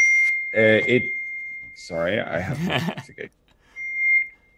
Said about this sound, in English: It's the loudest beep I've ever heard. I'm so sorry. I forgot on the Mac. Remember that? Mute the phone. It was not the phone. It was the computer itself.